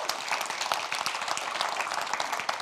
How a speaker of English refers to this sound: Can we give the Lord a big hand clap for that? Come on.